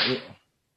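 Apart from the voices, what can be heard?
whip crack sound effect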